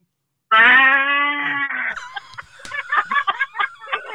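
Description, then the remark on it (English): A person lets out a loud, drawn-out moo in imitation of a cow, holding a steady pitch for over a second, then breaks into a string of short, choppy vocal bursts. “Was that her mood? Or whose mood was it? Was that the who mood?”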